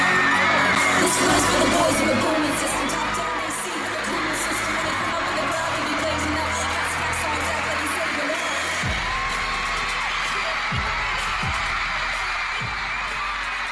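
A huge stadium crowd screams and cheers at a concert, a dense, high-pitched roar that stays loud for the whole stretch, with a few deep thumps breaking through near the end.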